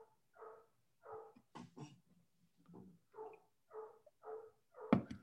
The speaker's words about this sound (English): Yes, I can hear the dog. Okay, I was like, I don't know if you hear that. Do you hear that?